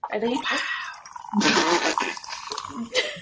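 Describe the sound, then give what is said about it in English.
Waterloo sparkling water is poured over vodka and ice into a glass with a brief fizzy, splashing rush, while voices talk before and after the pour. “So now I wanted to pour my Waterloo into it on camera just so you could get that ASMR experience.”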